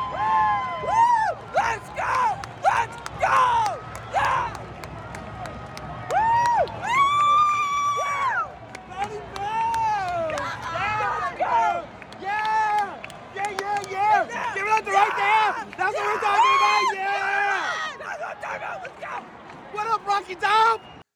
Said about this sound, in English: It is right after Michigan wins, so I'm in the stands, and the main person, you're going to hear a lot of yelling it was a video. You're going to hear a lot of yelling. Main one is me. It's 23 seconds.